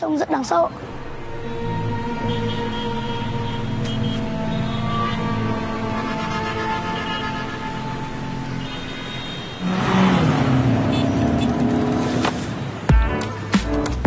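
Steady city traffic in Vietnam rumbles throughout, with droning engine tones, and a louder vehicle sweeps past near the end before the noise settles back into a continuous hum.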